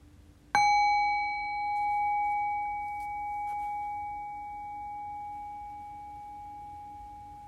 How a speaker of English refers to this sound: And in a few moments' time then, I'll ring the sound of the bell again. The invitation again is to rest awareness on the decay of the bell. Allow the fading bell to guide your awareness into silence.